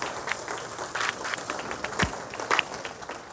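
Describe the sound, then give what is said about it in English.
Scattered hand clapping from a small audience applauding the production team, a quick irregular patter of sharp claps at moderate volume, with no voices over it. “So can we give them a hand clap?”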